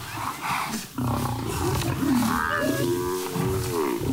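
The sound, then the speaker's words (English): A lion jumps out, pounces on and attacks a buffalo that was slower than the rest: loud roaring and growling churn continuously, with drawn-out, wavering bellows rising over the struggle in the second half. No one speaks. “The one buffalo was a little bit slower than the rest, and so the lion jumps out and pounces and attacks that buffalo.”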